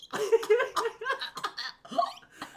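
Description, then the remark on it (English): A person imitates a series of hiccups with their voice: several quick, sharp vocal gulps in an uneven rhythm, moderately loud, with no other speech. “And that was her hiccup.”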